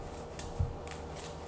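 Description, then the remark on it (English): Tarot cards being shuffled, soft papery riffles and slaps repeating in a loose rhythm at low volume, with no voices. “I mean, I'm sitting here shuffling. I'm like, hold on. I feel like I'm shuffling a little bit hard.”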